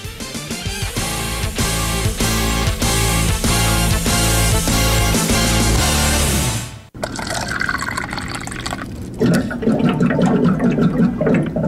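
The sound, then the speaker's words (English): A stretch of rhythmic music cuts off abruptly, then a water cooler gurgles loudly, with water glugging and bubbling steadily for several seconds and no talking. “Which, of course, is the sound of a water cooler, which I had people from the UK say, we have toilets that sound just like that.”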